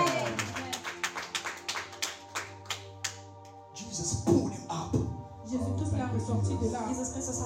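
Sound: audience clapping hands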